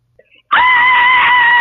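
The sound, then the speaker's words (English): A loud, super cheesy 1980s-style horror-movie scream from a caller bursts in after a moment of near silence and holds one steady, piercing pitch to the end, with no talking. “And after much technical difficulties, that scream finally came through.”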